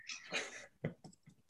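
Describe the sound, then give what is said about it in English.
A breathy rush of noise, then a few sparse, quiet clicks of typing on a computer keyboard, tapped at an uneven pace with no one speaking, while typing in a question about whether bands get paid for Urban Outfitters shirts. “I'm typing this in right now.”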